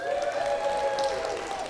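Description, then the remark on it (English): A crowd at a church service cheers and applauds steadily, a wash of clapping under sustained voiced whoops that hold a bright, fairly high pitch throughout the short burst. “Let's cheer for them.”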